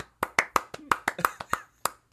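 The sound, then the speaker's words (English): Brief hand clapping, about a dozen sharp claps in an uneven, slightly scattered rhythm, as if from just a couple of people, at moderate volume with nothing else in the background, given as a hand for the writer. “I think there are going to be hordes of people clapping.”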